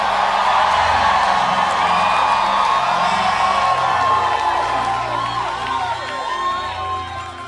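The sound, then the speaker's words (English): A large audience at a Household of David church service shouts and cheers loudly in praise of God, a dense, sustained roar of many voices with whoops and yells rising above it, filling the whole stretch without a pause. “Let him hear your loudest praise.”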